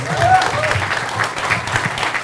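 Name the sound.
audience applause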